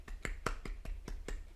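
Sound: brief applause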